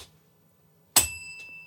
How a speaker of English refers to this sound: Yeah, where's the bell? I want the bell. The bell's coming. Everyone wants the bell.